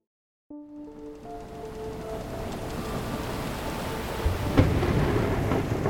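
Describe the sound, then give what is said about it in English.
After a moment of silence, a thunderstorm bursts in: steady, heavy rain and low rolling thunder, building slightly, with a louder crack of thunder near the end. No one speaks. “Lightning tore a hole in the sky above North Carolina's coast. Wind ripped over the Pacific, battering any vessel unlucky enough to be on the water the night of January 2nd, 1813”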